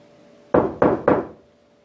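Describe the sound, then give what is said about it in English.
Three firm knocks on a wall in quick, even succession as part of a knocking game, each hollow thud fading briefly, with a faint steady hum and no talking. “So I'm going to knock on the wall here 3 times, and I would like for you to replicate it.”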